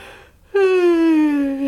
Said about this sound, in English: Just don't yawn. You make me yawn.